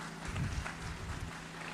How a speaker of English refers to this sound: And that's, yeah, give a clap. That's good.